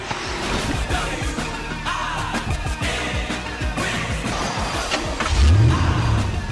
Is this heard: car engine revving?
yes